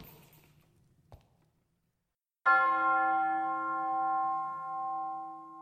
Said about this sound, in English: When the bell tolls one, look for the first spirit.